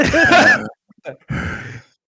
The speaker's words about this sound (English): I'm just breathing.